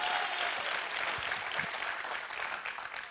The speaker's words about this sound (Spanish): Aniversario es fiesta. Anniversary means fiesta, festivities. So, vamos a aplaudir como si fuera fiesta. So, let us give a clap like we are celebrating.